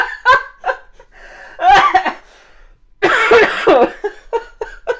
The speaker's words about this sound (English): also demonstrated proper coughing etiquette.